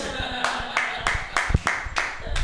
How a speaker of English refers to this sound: That applause of 3 or 4 people was more than enough to prove you wrong.